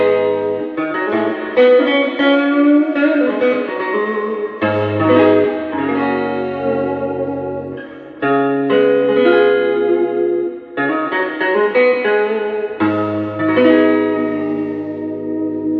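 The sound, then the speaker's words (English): An electric guitar plays sustained chords through an amp with a built-in spring reverb turned to maximum. The notes ring and wash into each other in a dense, shimmering tail. No one speaks. “So this is just it with the reverb's maxed, but I think it's got a magic to this amp.”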